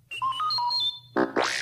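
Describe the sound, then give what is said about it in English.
A quick run of bright electronic robot beeps and warbling tones, stepping between pitches, then ending in a burst of chirpy, sweeping droid chatter, loud with no talking. It is R2-D2 beeping as the page-turn signal for a Return of the Jedi read-along book. “You will know it is time to turn the page when you hear R2-D2 beep like this.”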